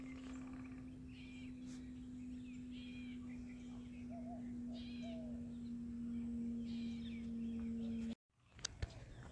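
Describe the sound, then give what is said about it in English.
A woodpecker calls with short chirps outdoors over a steady low hum and outdoor background noise; a brief silence near the end is followed by a couple of sharp clicks. “There's a woodpecker.”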